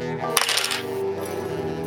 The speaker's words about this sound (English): All right, I want you to give me a Dex plus Brawl roll. So that's 3 for Dex, and then, yeah, that's it. Yep, roll it. It's 3 dice, right? Yep. Okay.